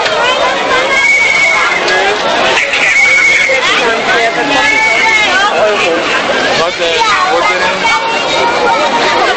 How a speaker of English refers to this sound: It would have been nice if the weather had been better, but I suspect it would have been even fuller then. You can probably hear the people galore around me.